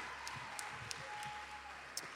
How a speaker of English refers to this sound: What an awesome privilege to look out and see a handful of the saints from Calvary Apostolic Church with us tonight, all the way from Bradenton. Come on, give them a hand clap of welcome tonight.